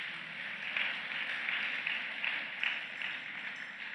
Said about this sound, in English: Give a clap offering to yourself.